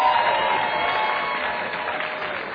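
A crowd applauds steadily, a dense wash of many hands clapping that stays loud throughout and tapers only slightly toward the end.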